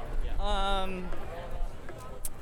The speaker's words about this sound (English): Yeah, we're walking around the crowd now. People lingering. These are gentle folks.